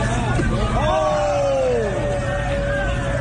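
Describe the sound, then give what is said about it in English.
Loud, continuous street crowd hubbub in Harlem with many overlapping voices, a few shouts rising and falling above the din, steady over dense background noise, as the crowd throws buckets and pours water on police officers making an arrest. “A crowd in Harlem throws buckets and pours water on officers in the middle of making an arrest.”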